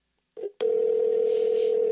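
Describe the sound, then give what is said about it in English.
A brief soft click, then a steady outgoing phone call ringing tone starts abruptly and holds at an even, moderate level without a break while a call is placed. No one speaks. “Yeah, so let me call one more person.”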